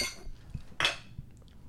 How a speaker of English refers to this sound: Cheers to dead semen, boys. Cheers to dead semen. Oh wait, clink them.